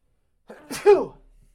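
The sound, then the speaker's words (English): A single loud sneeze: a short inhaled buildup followed by a sharp, explosive burst that quickly trails off into quiet. “I got to sneeze. Hold on.”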